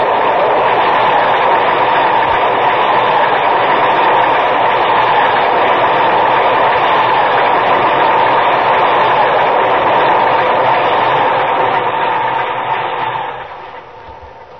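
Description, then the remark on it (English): A downtown express subway train roars past on the tracks, a loud, steady rush of rumbling wheels and rattling cars that fills the space before tapering off near the end. “Train coming! Train coming! Train coming! Watch it, Captain. Downtown Express.”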